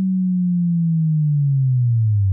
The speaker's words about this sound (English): The fundamental of most booges are made by some sort of basic wave, a common choice being a sine wave, which has no harmonics. Then you give it a nice, smooth pitch down.